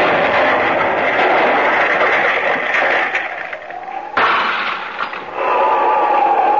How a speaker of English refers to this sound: There. There is the explosion and broke the window of the cottage. My scheme worked.